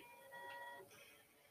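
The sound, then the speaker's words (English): A single steady car horn honk, a flat buzzy tone held for under a second, then cut off, leaving a low noisy game background with no voices. “Oh, I didn't know you could honk in this game.”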